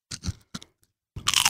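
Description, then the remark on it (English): Loud crunching of a thick kettle-cooked potato chip, barbecue and salt and vinegar flavored: two sharp bites, a short pause, then a dense burst of crackling chewing. No one speaks. “Oh, that's a good crunch. Isn't it kettle cooked?”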